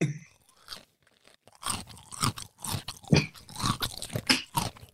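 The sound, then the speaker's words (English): Laundry being hung out with clothes pegs: irregular crunchy rustles and scrapes of fabric and plastic, with faint clicks mixed in, in uneven bursts and no talking. “This is me putting the laundry out. Can you even hear the peg?”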